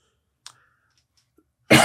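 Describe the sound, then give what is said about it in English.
A single loud, explosive sneeze bursts out near the end, harsh and noisy, after a short faint intake-like rasp and near silence. No one speaks. “Bless you.”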